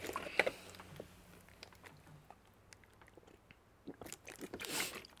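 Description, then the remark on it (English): Someone drinks water: a sharp clack at the start, then quiet wet sips and swallows, ending in a louder burst of gulping and mouth noise. No one speaks. “I need more water. Hold up.”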